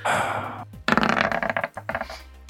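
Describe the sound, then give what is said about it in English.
A short rattling rush of noise, then a quick burst of hard clicks and clatters as dice tumble and bounce across a surface, settling after a couple of seconds. “I guess I could re-roll it.”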